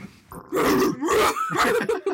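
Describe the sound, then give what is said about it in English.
A person imitates a dog with a few rough, throaty barks and growls in quick succession, loud, with no other speech. “I know how to sound like a dog.”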